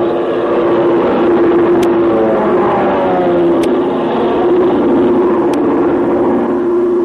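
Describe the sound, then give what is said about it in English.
A Chinese army plane drones overhead looking for a place to set down, with a loud, steady engine roar and a low humming pitch that wavers slightly, holding for several seconds; a few faint sharp ticks punctuate it, with no voices. “Can't make out what kind of a plane it's it is. It's an army plane.”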